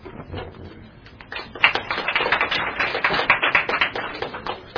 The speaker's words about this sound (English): So just a reminder, as I think it's really great that we're encouraging each other with applause, but I just want to remind you that the glory should be to the Lord, and not to take away from the fact that it's important to be encouraging